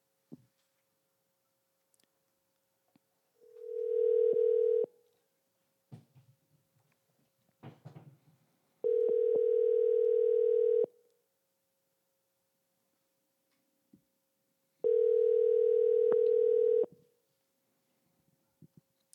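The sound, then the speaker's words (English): A phone line rings out on an outgoing call: three steady, buzzing ringback tones, each about two seconds long, separated by pauses with faint clicks and handling noise between them. “I hear it ringing.”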